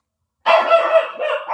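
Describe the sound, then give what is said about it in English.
A dog lets out one loud, drawn-out bark, stretching into a sustained, howling tone after a moment of silence, with no talking. “It's not my dog this time.”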